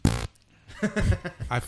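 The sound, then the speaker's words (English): A short, loud, buzzing fart bursts out for a quarter second, followed by a pause and then low murmured voices. “I farted that wholeheartedly.”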